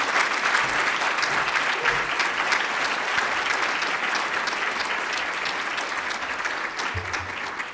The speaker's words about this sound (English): All right, so I can't thank you enough. Thank you so much, and please let's give her a round of applause.